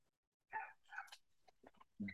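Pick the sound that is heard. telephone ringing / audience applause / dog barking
dog barking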